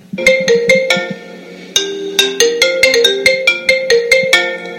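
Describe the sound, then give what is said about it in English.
A telephone rings with a bright, melodic ringtone: a quick bouncing run of electronic notes, a brief pause, then a longer jaunty phrase, loud with no one speaking. “If the phone's ringing, don't worry.”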